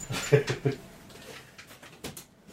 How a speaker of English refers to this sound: Let me shut this window real quick. I got a crow outside. That's everyone can hear.